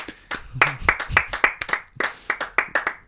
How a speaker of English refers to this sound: 5 seconds of clapping.